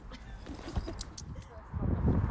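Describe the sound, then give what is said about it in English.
Car doors opening: a few sharp latch clicks and clunks in quick succession over a low rumble and rustling, growing busier toward the end. “Let's open those car doors.”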